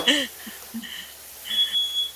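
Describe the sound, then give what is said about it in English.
A smoke alarm beeps in short, high-pitched bursts, about three chirps in two seconds, with a faint voice murmuring underneath and the last tone lingering slightly longer. “Love that smoke alarm problem.”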